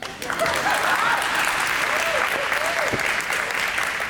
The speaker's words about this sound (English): Amen? Amen. Let's pray. You can clap.